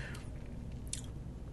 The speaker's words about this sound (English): I'm going to take another sip to really start picking them out.